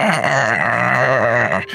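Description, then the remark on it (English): A person imitates an animal's growl, voicing Figgy growling at the corpse of a creature: one sustained, rough, guttural snarl lasting under two seconds, loud and wavering in pitch, with no speech around it. “Figgy scampers over her and just growls at the corpse of this thing.”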